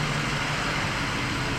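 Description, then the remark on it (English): A steady, continuous rumble of big trucks on a road, deep engine drone blended with broad road noise, holding an even loudness throughout with no voices. “And a lot of, if you can hear, there's a lot of big trucks over on this side.”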